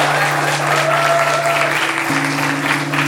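An audience gives a woman a round of applause, clapping steadily and loudly, a dense crackle of many hands clapping that fills the whole stretch, with a low steady tone humming underneath.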